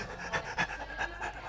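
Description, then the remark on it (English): A person imitates a newborn baby's irregular breathing, not breathing for several seconds and then quick, breathy panting, about five short bursts in a row with uneven spacing, with no talking. “They do this weird thing where like they won't breathe for several seconds and then they go.”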